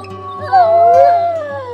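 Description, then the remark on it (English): A wolf in the Lamar Valley of Yellowstone howls in one long, clear, wavering note that rises and then slowly falls, with a steady low hum in the background and no one speaking. “The reintroduction of the Lamar wolves.”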